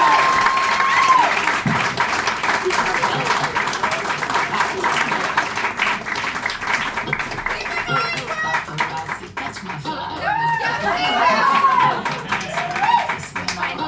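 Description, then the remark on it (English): A large audience at a live show claps steadily and loudly throughout as the headliner is introduced, with shouts, cheers and a few whistles rising out of the dense, continuous applause. “Make a lot of noise right now for”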